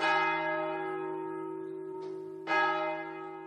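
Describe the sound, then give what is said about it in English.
A deep, resonant monastery prayer bell, at the monastery next to Cistercian College, a boarding school in Ireland, rings twice to call the monks to prayer, the first stroke ringing out with a long shimmering decay before a second full strike at about two and a half seconds, heard clearly with no voices. “All schools use bells to mark the rhythm of the day, but in Cistercian College, as well as the school bell, they have the prayer bell from the monastery next door.”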